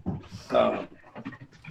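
A dog gives a brief, high whimper amid quick, breathy panting as it waits to be let inside, with the sound rising to a peak and then trailing off into softer huffs.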